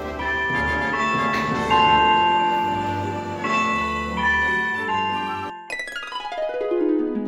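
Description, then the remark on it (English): A clock strikes twelve, heard as resonant, bell-like strokes whose bright overtones hum on between hits, the last one left to ring out and fade slowly. No voices are heard. “She quite forgot her godmother's order to her, so that she heard the clock begin to strike 12, when she thought it could not be more than 11.”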